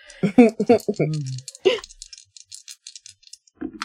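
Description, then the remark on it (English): After a brief voice, two new six-sided dice clatter and tumble across a hard surface in a quick run of sharp little clicks, fairly quiet, before settling with both showing four. “Two new dice. Enter the fray.”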